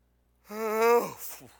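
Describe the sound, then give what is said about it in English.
A man acts out Jesus getting up from sleep on a boat and yawning: a single drawn-out voiced groan about half a second long that trails off into a breathy exhale. “So he just gets up, yawns, stretches.”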